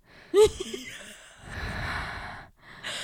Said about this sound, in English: dude, can you stop breathing so loud? Wait, was I breathing loud? Was I actually breathing loud? Was I actually? Yeah, I can literally hear your breathing. Freaking mouth breathers.